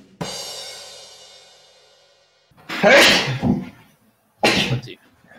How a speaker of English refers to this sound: Hey! At least sneezed his lights out. It's true. They at least sneezed so hard the lights went out.